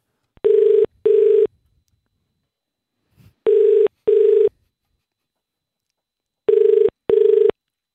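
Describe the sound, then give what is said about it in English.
A phone call to the Cornerstone and Co cafe rings out in the classic double-burst pattern, three pairs of steady buzzing rings separated by pauses, clear with no one talking. “So we're going to give him a call. We're going to give the cafe a call.”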